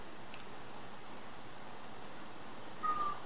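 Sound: cat meowing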